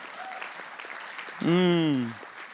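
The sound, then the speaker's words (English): A crowd applauds, with a steady, soft patter of many clapping hands, giving a hand to the volunteers who clean the church. A loud sustained voice with a falling pitch rises over the clapping before it fades. “Not all of you that were clapping are on a roster, though.”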